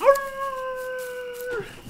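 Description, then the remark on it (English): A person lets out a single loud wolf-like howl, rising sharply at the start, holding a steady tone for over a second, then dropping away, with no talking around it. “I'm going to howl at the moon.”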